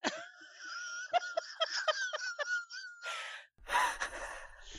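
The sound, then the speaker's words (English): A voice imitates whimpering with a run of short, high, strained whines and catches of breath, then breaks into breathy gasping sobs toward the end. “I think Iris is sort of laying on the floor now, like in a little ball, just whimpering.”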